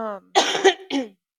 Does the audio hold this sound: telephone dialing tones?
no